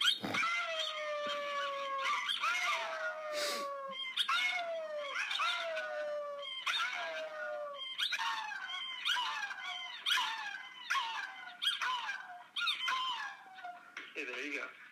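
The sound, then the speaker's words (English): A small female dog gives a steady run of high-pitched, whining barks, about a dozen in quick succession, fairly loud with little else around them, barking in response to a person imitating a bark. “That's me barking. Now watch her.”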